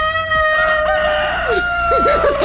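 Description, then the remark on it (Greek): A rooster crows loudly, its strained, wavering call filling the moment, with a few clucking chicken sounds mixed underneath and no voices present. “άκου και ένα κόκορα για πάρτι σου”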